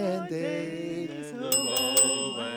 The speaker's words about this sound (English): And Zuzu says, look, Daddy, teacher says every time a bell rings, an angel gets his wings.